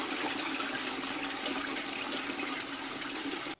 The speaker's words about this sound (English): I couldn't find a sound effect for trash, so I had to find a toilet flushing to represent this next person.